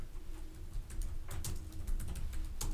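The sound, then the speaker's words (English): Rapid, irregular keyboard clicks tap away, a quick patter of light keystrokes as someone searches online for a Casanova film, over a low background hum with no one speaking. “You guys can hear the sounds of clicking.”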